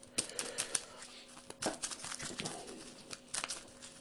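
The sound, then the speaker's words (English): Quick papery clicks and riffling bursts come in irregular clusters, like the encounter deck of a card game being shuffled, fairly quiet and with no talking over it. “Shuffle the encounter deck.”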